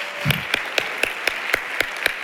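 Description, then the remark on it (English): A church crowd claps in unison during worship, sharp steady beats about four per second over a dense wash of scattered handclaps, with no voices. “Come on, clap your hands and magnify the Lord.”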